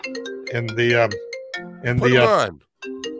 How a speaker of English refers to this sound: Put them on. We want to take that phone call.